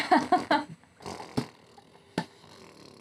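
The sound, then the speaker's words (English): A voice imitates a slow, drawn-out sloth fart with a few buzzy, grunting blurts, then trails into breathy rasping, broken by a few sharp clicks. “Does it just sound like a regular fart? No, or but like, really slowly.”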